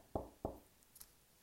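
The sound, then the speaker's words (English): Two firm knocks on a door, evenly spaced about a third of a second apart, each a short hollow thud that dies away quickly, followed by quiet with a faint click. “A knock on your door of your house, your apartment, wherever you live, you get a knock on the door.”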